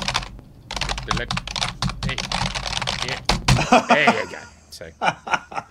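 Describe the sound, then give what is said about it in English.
Rapid, uneven clatter of keys on an old computer keyboard, fairly loud, with bursts of quick taps and short pauses, joined near the end by soft chuckling and voices. “Sounds like you're typing on an old Commodore 64.”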